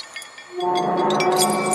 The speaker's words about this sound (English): You can hear the clanking of chains and the sort of scraping sounds. This is what suddenly Scrooge could hear.